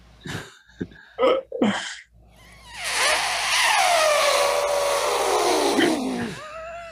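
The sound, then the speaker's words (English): Someone recreates the elephant trumpeting sound he used to perform on stage: a few short breathy snorts, then a loud, raspy, brassy blare held for several seconds that slides steadily downward in pitch before cutting off. “I did the elephant sound. Let me see if I can do it.”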